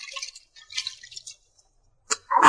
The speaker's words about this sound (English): Oh, here's that stream I told you about. Pretty, ain't it? Good water, too. Have a swallow?